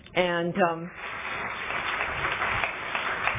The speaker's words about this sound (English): And as we all know, that applause is for every one of us and for this program, because without you and without that, I would not be standing up here, and that is for sure.